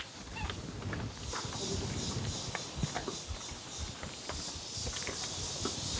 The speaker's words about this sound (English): If you listen closely enough, you might actually be able to hear the male tapir chewing.